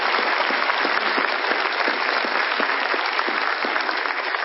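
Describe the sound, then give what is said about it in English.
A large crowd applauds steadily for a former pastor and his wife as they stand, a dense, continuous wash of many hands clapping at even loudness throughout, with no voices standing out. “Would you stand so we can give you a huge round of applause?”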